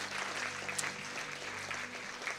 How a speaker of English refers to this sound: Now clap for Jesus. Come on, put some praise on your lips right there.